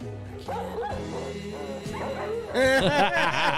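A dog barks and yips agitatedly in a rapid string of harsh, whining calls, fairly loud, growing more intense and frantic toward the end.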